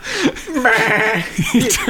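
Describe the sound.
A person's voice imitates a goat, letting out a wavering, quavering bleat that runs for about two seconds, close and fairly loud, with a nasal, trembling quality.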